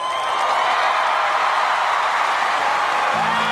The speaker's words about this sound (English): Oh, I want to hear the applause. Wow. Wow.